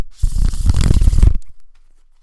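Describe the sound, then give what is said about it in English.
A deck of tarot cards is shuffled: a dense, papery riffle lasting about a second, loud and crisp, with nothing else audible before it fades to silence. “Well, while we shuffle and get these ready, the reason why we are starting off with it this week is because our topic this week is actually going to be about tarot.”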